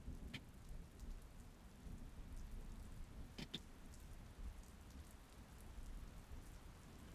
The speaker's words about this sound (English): You will hear behind you the sound of thunder and lightning. But you are not afraid. and you can hear rain. The cave is comforting and dry.